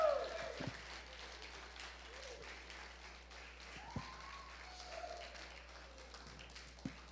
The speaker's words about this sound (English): Somebody give God a hand clap of praise in this church. Woo!